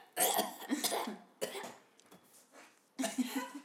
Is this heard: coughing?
yes